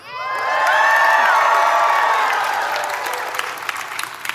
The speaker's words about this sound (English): And in the other corner, a teenage shepherd boy with some ping pong balls, with stones and a slingshot, and all the Israelite army now cheering for him.